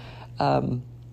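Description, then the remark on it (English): A single brief shout from a family member right outside a door, hollering from one side of a house to the other, a raised call lasting under half a second over a steady low electrical hum, with no other talking. “If you can hear voices in the background, that is my family right outside my door, apparently hollering from one side of the house to the other, and I give them grace.”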